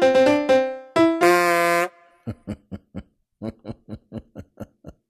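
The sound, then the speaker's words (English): A truck horn honks loudly in several short blasts and one long sustained blare, followed by a quick series of short, rhythmic honking bursts that trail off. “Boy, they're not generous drivers up in these areas, are they? They honk that horn.”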